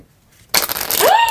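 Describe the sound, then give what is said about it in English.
Playing cards are riffled and bridged in a bridge shuffle: a sudden, dense fluttering crackle of rapid card clicks lasting under a second, with a brief rising vocal exclamation near the end. “Can you do a bridge when you shuffle?”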